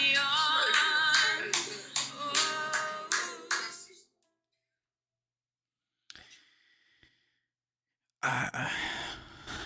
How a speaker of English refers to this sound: that wasn't me clapping, by the way. That was the video. It was somebody making a, like a funny, making fun of Republicans video, and being like clapping to the song.